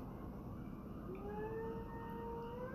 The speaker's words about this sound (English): I can hear the ambulance a little bit.